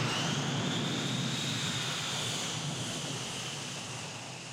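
A loud Boeing 737 jet airliner on Goodyear tyres roars past overhead, its broad rumble topped by a high engine whine that slowly fades as it moves away.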